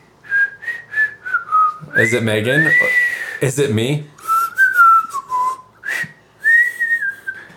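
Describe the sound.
A person whistles the whistle solo of a song, a simple melody of sustained, sliding notes, broken up by brief spoken questions from other people; the whistling is clear, resuming between the voices.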